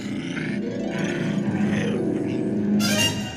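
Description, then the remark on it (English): A continuous, throaty dog-like growl, voiced by a person imitating a dog, rumbles loudly for a few seconds, rising into a harsher snarl near the end. “This is the point where I have the note that I think the dog noises are made by a human.”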